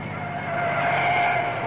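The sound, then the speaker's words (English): A car engine hums steadily as the vehicle, headlights on, approaches along the main road to town, its drone swelling slightly louder over a couple of seconds, with no voices present. “Oh, there's a car coming. I see headlights.”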